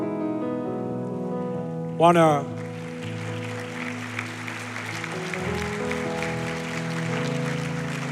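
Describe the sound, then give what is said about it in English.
A church audience claps after a prayer in a steady, dense patter that runs for several seconds, layered over sustained keyboard chords, with a brief sharp swell of sound just before the clapping builds. “Anyone who knows me, you know I'm a fan of clapping, not because I like you clapping for me, but I'm like, hey, that's a good moment to clap.”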